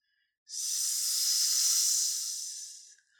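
A voice imitates a snake with one long, steady hiss, fairly loud, lasting about two and a half seconds before trailing off, with no talking.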